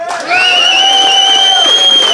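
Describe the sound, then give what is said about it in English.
A Phoenix audience, voting by applause on which side talked best, bursts into loud cheering and applause after a brief quiet moment, with sustained high-pitched whoops and shouts ringing over steady clapping for about two seconds. “So if you think Stu and Ben, and therefore Esther, is in the right, applaud now.”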